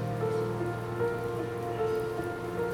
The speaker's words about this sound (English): Let the crystal rain fall over your tightly coiled muscles.